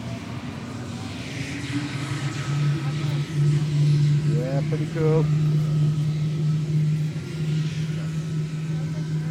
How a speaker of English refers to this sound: You'll hear them starting up. That high-pitched whine is the engine lighting off and getting up to speed, okay? There go the blades. It becomes very noisy now. You hear a deep growl as the power turbines kick in.